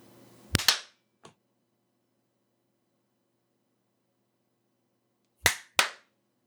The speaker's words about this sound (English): Clap at 5 and then again at 10.